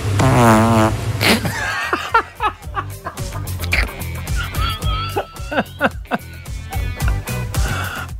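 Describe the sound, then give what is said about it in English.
Auto-tuned fart sounds, pitched and buzzy, tuned into a bouncy melody over a steady thumping beat, loud and continuous like a novelty song, with the farts shifting note rhythmically throughout. “Yeah, or that's you've auto-tuned your fart into the sound of”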